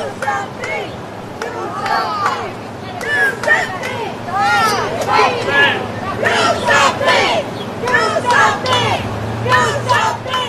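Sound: crowd chanting in unison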